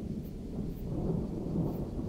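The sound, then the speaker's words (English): A deep, rolling rumble of thunder from a lightning strike fills the whole clip, low and steady with no sharp crack, sounding heavy and sustained without any voices. “You got struck by lightning in a cave.”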